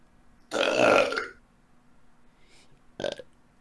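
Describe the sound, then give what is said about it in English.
A single loud burp lasting about a second, followed by quiet and then a brief, softer mouth or breath noise near the end. “I don't have any burps for you, sorry.”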